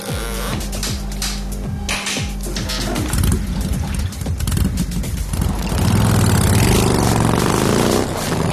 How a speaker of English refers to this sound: But as Valkyl watched that biker pull into the parking lot underneath a buzzing neon sign, he knew what he had to do.